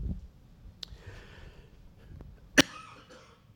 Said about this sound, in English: Bless you, dear. She was sick and she shared.